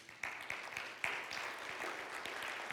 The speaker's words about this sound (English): About half of you clapped and half of you didn't. You're like, what's the big deal about that?